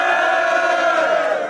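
A crowd at a Future of Battle Rap event, a Cologne derby, cheers and shouts loudly and steadily for a rapper from Nippes. Many voices blend into a sustained roar with whoops, holding full volume before easing slightly at the end.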